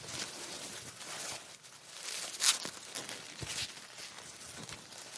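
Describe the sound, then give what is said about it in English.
Soft, continuous rustling of fabric as an ASMR trigger, with a broad hissy texture, punctuated by a few light crinkly bursts and one brief sharper swish midway, with no voices. “And this one, this one here is just another rustling sound. It's more like fabric rustling.”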